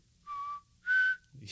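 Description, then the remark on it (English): A person whistles two short, clear notes, the second slightly higher and louder, with no talking, followed by a brief breathy rustle. “He's you the know. One who whistles.”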